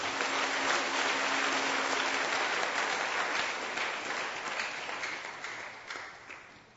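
A church audience claps for the Lord in a dense, steady burst of applause that holds strong for several seconds, then gradually thins and fades out toward the end.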